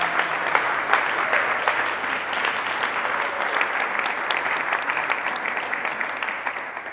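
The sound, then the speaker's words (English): Sustained applause from an audience, dense rapid clapping filling the whole stretch at a steady, fairly loud level with no voices breaking through. “Can we give Simon a big round of applause?”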